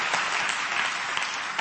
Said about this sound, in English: You ought to give them a great big applause. They're awesome.